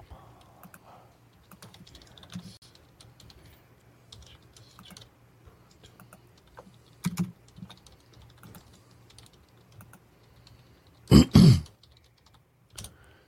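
Soft, irregular clicking of keys on a computer keyboard continues throughout, with a couple of louder bursts near the end that sound like a throat clearing or cough.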